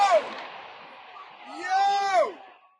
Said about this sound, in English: So a UN school being blown up, TNT, and then you've got a bunch of soldiers cheering.